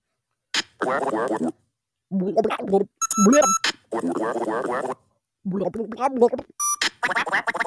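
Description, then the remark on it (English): The garbled, gibberish voice of a video game's evil fox character babbles in several short, choppy bursts, punctuated by brief electronic beeps, loud with short gaps between phrases. “It's the evil fox.”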